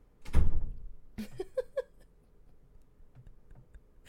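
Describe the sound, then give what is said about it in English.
A door shuts with a heavy low thud as someone walks out, then a few sharp clicks and rattles follow, like a latch or handle settling, before the room goes quiet. No one speaks. “And you're going to really walk out the door without saying bye.”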